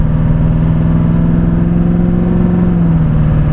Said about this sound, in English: Truck shifts at 2,400 RPM. It just kind of calmly goes about its business. It's not screaming. It's not revving all the way out.